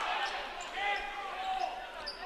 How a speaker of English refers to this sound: Bobbles the ball, now fakes it, dribbles it, goes through between the defenders, and it's knocked away by a Michigan City defender.